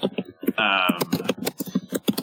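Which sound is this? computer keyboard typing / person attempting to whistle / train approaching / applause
computer keyboard typing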